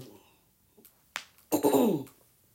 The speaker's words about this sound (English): Y'all, excuse me. I got a little cough.